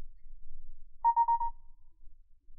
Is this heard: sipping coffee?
no